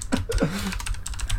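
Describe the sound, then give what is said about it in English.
Rapid clicking of computer keyboard typing, a quick run of crisp keystrokes, with a faint voice-like tone sliding underneath partway through. “Okay, that's a lot of typing.”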